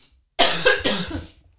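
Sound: cough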